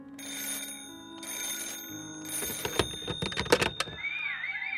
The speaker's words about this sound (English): Shortly after midnight, the phone in George's first floor office rang and woke up Jenny.